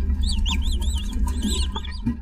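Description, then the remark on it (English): A rapid series of small, high-pitched naked mole rat chirps, the colony's own specific chirp, repeated about every quarter second, each a quick rising-and-falling squeak, over a steady low rumble of background noise. “And the mole rats use the chirp just like the Gileadites use the word shibboleth.”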